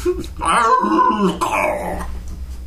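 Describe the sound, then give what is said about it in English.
A voice imitates a made-up creature, a dog-faced rooster, with a rough, strained crow with a barking edge, in two drawn-out bursts with sliding pitch, fairly loud. “That was a sort of dog-faced rooster barking, crowing.”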